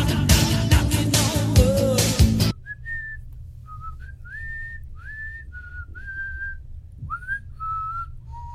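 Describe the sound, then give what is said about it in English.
After a loud burst of dense, music-like sound, someone whistles a short tune from the video game Bust a Move alone: a series of clear, mid-high sliding notes with brief pauses between phrases. “Did it sound like a tune to you?”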